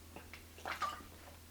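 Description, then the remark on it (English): Water is poured over a hand, making soft, uneven splashing bursts that swell briefly near the middle. It is fairly quiet, with a steady low hum beneath and no talking. “My body right now is rightly dividing that water, and it don't need my assistance.”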